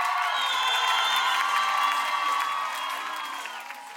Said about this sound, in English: Yes, of course. It's helped because all people absolutely applause. This Eastern Ukrainian crowd, they were screaming their name.